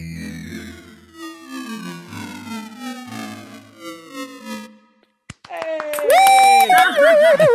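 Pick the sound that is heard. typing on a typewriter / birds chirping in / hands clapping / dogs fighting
hands clapping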